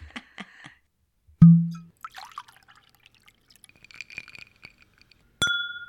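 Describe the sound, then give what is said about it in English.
Whiskey glasses clink and tap with small drippy, liquid sounds and a dull thud, ending in one bright, ringing clink that hangs for a moment. No one speaks. “We're having a lovely discourse over a glass of whiskey.”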